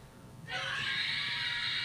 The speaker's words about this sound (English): Oh no. Oh, now she's screaming like that?